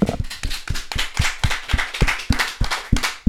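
A small group of hosts claps their hands, a quick, fairly steady run of sharp claps lasting a few seconds, with no talking over it.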